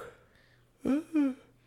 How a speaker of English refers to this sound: Sorry, I'm fucking yawning, man. We're here late. It's almost 10 o'clock.